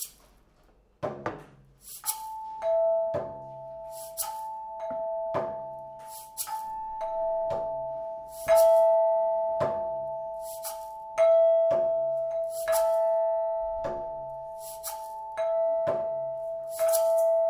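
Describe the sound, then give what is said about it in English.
Bright metallic orchestral chimes are struck again and again at a steady, unhurried pace, each clear ringing tone sustaining and overlapping the next. The playing is fairly loud, with no voices. “Are we going to come in with chimes next?”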